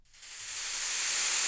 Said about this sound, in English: So this is white noise.